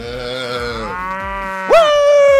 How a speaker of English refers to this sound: Where's the moo? Hold on. Looking for the moo.